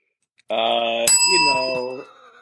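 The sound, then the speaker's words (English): A hand bell rings out once, sharp, its bright metallic tone lingering and slowly fading while a person keeps talking over it. “Why have I hidden my bell?”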